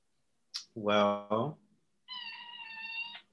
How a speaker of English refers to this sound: Well, that was your cat. That was my kitten. Saying it's time for us to wrap up this episode because she needs attention.